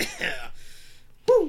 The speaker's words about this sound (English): I'm still not completely over my cough.